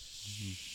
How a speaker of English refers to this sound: Is that the sound of a bomb whistling drop? It's the sound of a bomb full of snakes.